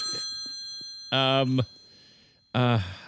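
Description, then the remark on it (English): A telephone rings twice, each loud electronic burst about half a second long, separated by a short pause, over a faint steady background hum. “Adam, answer the phone”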